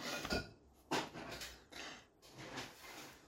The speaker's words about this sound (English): Sorry about this. Smashing around. My mum's smashing bottles.